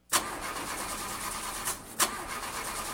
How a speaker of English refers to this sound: Car not starting? Yeah, it just started doing this, and I don't know who to trust to take care of it.